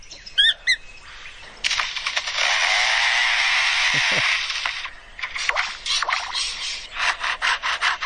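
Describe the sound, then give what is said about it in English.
A bird mimics a chainsaw in its courtship song: a few quick chirps, then a loud, sustained mechanical buzzing drone for several seconds, followed by bursts of rhythmic rasping, with no talking. “And as you're going to hear, it even mimics a camera shutter, a shutter with a motor drive, a car alarm, and then, as you said, a chainsaw.”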